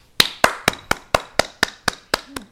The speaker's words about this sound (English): Clap it up.